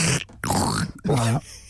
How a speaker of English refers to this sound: Now, don't forget, these bottles are designed so when you try and drink out of it, it makes this noise.